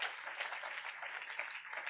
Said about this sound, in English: Praise God. Clap now. Rev is clapping. Clap.